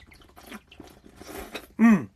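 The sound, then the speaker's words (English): Sips and gulps of ice-cold water, with ice at the bottom, with faint liquid movement, ending in a loud, satisfied voiced 'ahh' after swallowing. “I think I need a little bit of water.”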